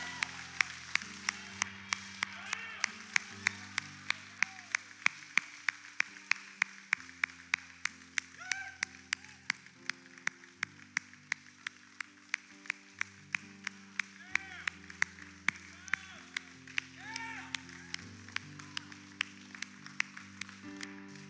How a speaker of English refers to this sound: But I want us just to cheer today because we win. Because I know when I win, it feels good to cheer. When your team wins, it feels good to cheer. Can we just cheer and thank the Lord together in this moment? Because we know that we win.